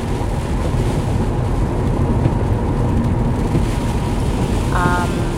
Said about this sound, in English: It's like really rainy.